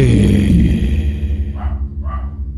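A dog barks twice in the background, the two short barks about half a second apart, beneath a loud, steady low rumble that fills the whole recording.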